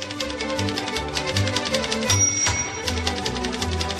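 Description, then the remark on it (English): Rapid, vigorous typing clatters in a steady stream of key clicks over loud, continuous background music, with no talking. “Why are you typing vigorously with music playing?”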